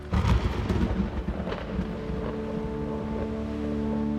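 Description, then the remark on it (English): A storm with wind roaring: heavy rumbling gusts burst loudly at first, then settle into a steady, droning howl. No voices are heard. “And they turn to leg it through the storm and through the winds and into the forest.”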